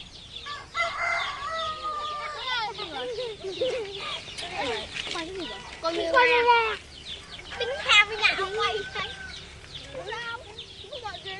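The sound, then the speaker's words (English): Chickens cluck and squawk continuously while a rooster crows repeatedly, their overlapping calls rising and falling in a busy chorus, at a home in a simple rural village in Vietnam where families rear ducks and chickens. “In homes like this one, families rear ducks and chickens in close proximity.”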